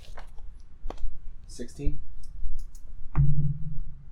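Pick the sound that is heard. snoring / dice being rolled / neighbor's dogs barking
dice being rolled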